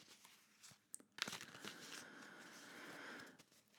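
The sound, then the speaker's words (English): Tarot cards being shuffled for a reading: a few quick papery taps, then a steady riffling, crackling rustle lasting a few seconds before trailing off. No one speaks. “Shuffling, asking the spirit of the tarot humbly.”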